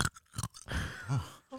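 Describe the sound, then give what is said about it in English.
Crisp crunching of ice cubes being chewed as a quick ASMR, a few sharp bursts followed by grinding munches, loud with no talking. “What are you munching on? Ice.”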